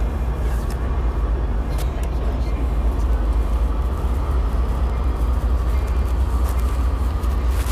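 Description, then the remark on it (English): Steady, heavy rumble of a train at a busy station platform as someone comes down to it, with deep low-end roar and occasional sharp metallic clicks and clanks breaking through the continuous noise, amid bells, whistles and people. “Anyway, we're coming down to the platform, so you probably hear all the bells and the whistles and the peoples.”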